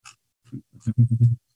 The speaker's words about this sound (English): I keep trying to mute my dogs in the background.